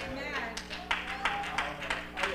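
One person claps their hands in a steady, even rhythm, about six or seven sharp claps, moderately loud over a low, continuous background hum.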